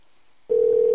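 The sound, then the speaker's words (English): Silence, then a steady telephone dial tone switches on abruptly halfway through and holds loud and unbroken to the end, while a dropped call is being redialed live on air, with no voices present. “Ring, ring, ring. One more time.”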